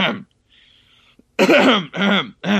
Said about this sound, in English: Let me clear my throat, and it's very super obvious what my MVP is.